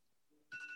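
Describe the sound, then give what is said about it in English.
A phone suddenly starts ringing after a quiet moment, a bright electronic trilling tone that comes in loud and keeps going. “Oh, my phone.”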